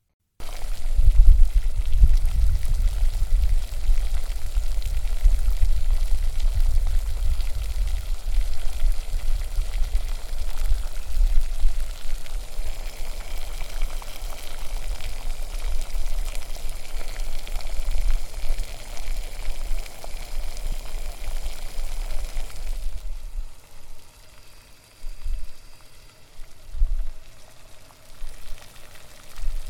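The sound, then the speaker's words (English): A pot of water with tomatoes in it boils steadily with a dense, rolling bubble and low rumble, easing into quieter, sparse bubbling near the end; the tomatoes are being boiled to make them easier to peel. No one speaks. “Tomatoes in boiling water to make them easier to peel.”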